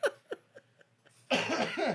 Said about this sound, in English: Thanks for coughing this way